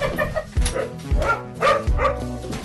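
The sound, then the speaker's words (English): Several dogs, just let out, bark and yip in quick, overlapping bursts, loud, with a few sharp barks standing out about every half second over ongoing yapping. “But basically, obviously everyone can hear the dogs, because...”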